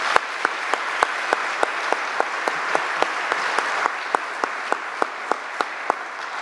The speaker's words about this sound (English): So I want to give Father Paul a round of applause for that.